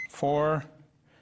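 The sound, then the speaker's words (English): A microwave keypad is tapped to set 4.5 minutes for heating chili and cheese sauce: a quick click and soft rustle, then one steady, buzzy electronic beep lasting about a third of a second before fading to quiet. “And we set the microwave for”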